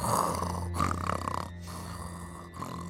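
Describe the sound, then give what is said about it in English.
A boy fast asleep in his bed snores loudly: rasping snores fill the whole stretch, continuous, with a rough rattling texture that swells and eases between breaths. No voices are heard. “Despite the noise of the thunder, the boy was fast asleep in his bed, snoring loudly.”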